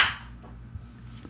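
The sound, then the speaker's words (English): One crisp, sharp hand clap rings out at the start, then quickly fades, leaving a low steady hum with no voices. “I mean, that might be one of my best executed claps ever.”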